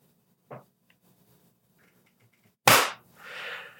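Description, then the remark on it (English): A faint soft tap, then after a pause a single loud, sharp hand clap with a quick ringing decay, followed by a brief rustling hiss. No one speaks. “Okay, let's do 40 because you talked that whole time and I need space to see the clap.”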